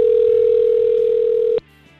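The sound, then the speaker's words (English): A phone line ringing on an outgoing call to the caller's mother. One steady, fairly loud electronic ringback tone holds for about a second and a half, then cuts off abruptly into faint background hiss. “Let's see if she'll answer the phone.”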